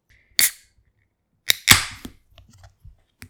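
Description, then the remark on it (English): Cans of cranberry and pomegranate Kolsch beer cracking open: a sharp pop with a short fizzing hiss, then another quick click and a louder, longer hiss of escaping gas, followed by faint scattered clicks. No one speaks. “That is quite the pitch. So let's just open it.”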